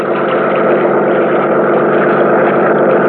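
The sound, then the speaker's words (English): The engine of a Higgins runabout motorboat heading south on Lake Mead runs at a constant, loud drone, a dense low rumble with a buzzing hiss on top that holds steady without any change in pitch or pace. “I met him at the dock, and within a few minutes, we were on board as Higgins run about and heading south.”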